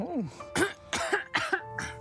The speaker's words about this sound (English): What is that? I've got a cough today.